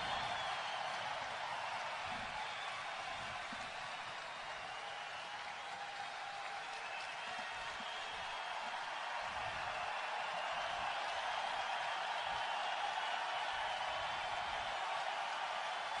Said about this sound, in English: Applause just continues. Owner Terry Pegula waiting for them to stop, and I think he's being told that he can go ahead and speak now. Which is going to be a challenge. The crowd now getting even more loud for Rick.